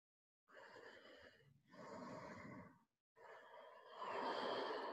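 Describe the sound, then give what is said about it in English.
Slow, audible ujjayi breaths drawn through a constricted throat during a yoga practice, giving a soft oceanic hiss: a long inhale, a brief pause, then a stronger exhale, fairly loud with no talking. “Create your ujjayi breathing.”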